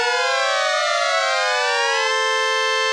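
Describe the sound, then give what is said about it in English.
A loud synthesizer tone with many bright harmonics sweeps up and down at the same time, wailing steadily like a tornado siren, continuous with no talking. “Sounds like a tornado siren.”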